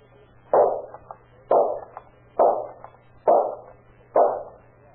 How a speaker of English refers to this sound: Oh, boy, look at that. 5 shots and 5 bullseyes.